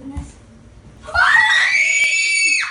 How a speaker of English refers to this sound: And of course, everybody again records Christmas and birthdays, and then it's up on, and you can see when somebody opens a present and it turns out to be unexpected and just terribly exciting, often there's a lot of screaming.